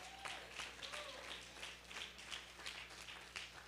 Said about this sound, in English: If this brother's up here playing this instrument, and he is, and he's doing a good job, and give him a hand clap for that.